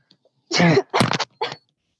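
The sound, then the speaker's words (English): A loud sneeze: a voiced, drawn-in buildup breaks into a sharp noisy burst, then a shorter follow-up burst. “May God bless you.”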